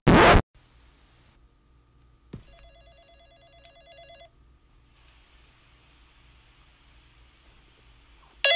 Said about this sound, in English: the phone's ringing. Oh, it's 12:30 in the morning. Who's calling now?